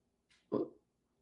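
A single short, loud dog bark, preceded by a brief breathy huff, with quiet surroundings and no talking.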